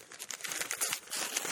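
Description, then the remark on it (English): Crisp crinkling of paper packaging being carefully pulled open, a continuous run of rustling crackles with brief sharper bursts, no voices present. “I'll try to open this up carefully. I know Shane like to keep dropping paper.”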